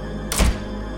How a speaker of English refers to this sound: Shut the fucking door. Shut it.